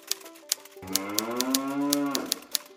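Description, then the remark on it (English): A single long, low cow moo swells and fades near the middle, while sharp, evenly spaced clacks like typewriter keys tap steadily throughout. No voices. “In the background, he heard the cows busy at work.”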